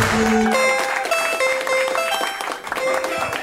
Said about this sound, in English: Thanks for coming out to the UTB. Put your hands together. Please put your hands together for your host, Cameron Esposito. Put your hands together. Get ready to clap. Put your hands together. Put your hands together.